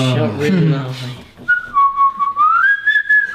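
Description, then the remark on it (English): A brief burst of voice gives way to a clear human whistle that holds a steady note, dips, then climbs to a higher pitch in a deliberate, patterned signal. “We will whistle. We will have a very, very elaborate whistle.”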